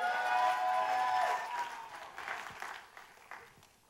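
An audience applauds in a dense, steady wash of clapping, strongest at the start with a sustained tonal layer underneath, then gradually thinning and tapering off.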